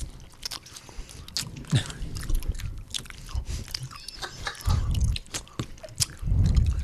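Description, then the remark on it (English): Wet chewing with squishy, smacking mouth sounds and irregular soft bites, no real crunch, continuing steadily for several seconds with no talking. “They don't really crunch, but they sound disgusting.”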